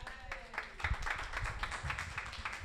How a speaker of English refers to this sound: But other than that, let's give another round of applause for Oz9.